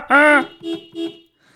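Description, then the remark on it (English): A loud, steady-pitched horn honk sounds once, followed by two shorter, softer tonal bursts in quick succession. “You should honk your horn.”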